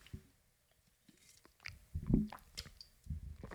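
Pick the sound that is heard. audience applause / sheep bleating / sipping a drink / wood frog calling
sipping a drink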